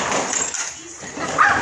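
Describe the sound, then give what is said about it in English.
Dogs bark outside at another dog, a few muffled yelps rising out of steady background noise, with the sharpest bark near the end. No one speaks clearly; the barking stays faint. “There they go, out there barking at the damn dog.”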